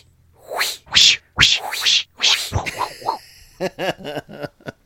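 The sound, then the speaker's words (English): A rapid series of sharp, loud whooshes of a knife being swung through the air, several times in a row, then gives way to short, yelping cries. “Were there not sound of like whoosh sound effects?”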